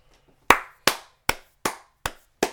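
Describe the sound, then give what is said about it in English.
A slow clap: six sharp, crisp hand claps spaced evenly about a third of a second apart, each with a short decaying tail, and no voices alongside. “Slow clap.”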